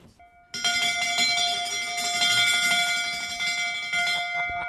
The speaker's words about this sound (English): There's so much brass, including, of course, the big brass bell. Can we hear the bell?